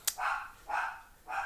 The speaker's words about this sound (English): It appears the dog is going crazy. Please hold. I'm back. The dog forgot that my mother-in-law was here helping with the baby, and he heard her upstairs and decided to protect the house. He's only like 10 pounds, but he's fierce dog.